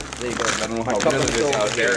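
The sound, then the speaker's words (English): A pretzel chip bag crinkles and crackles continuously in a dry, papery rustle while voices murmur over it. “Y'all gonna hear the motion, the bag.”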